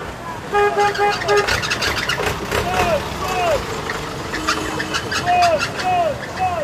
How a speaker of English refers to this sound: On Obersee OK Road, the only vehicle access into Sodom and Gomorrah, trucks of scrap are being constantly unloaded. Most of the lorries come from the nearby harbour, where ships arrive from Europe every day, bearing containers and used cars.